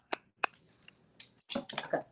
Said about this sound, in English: And let me take a drink.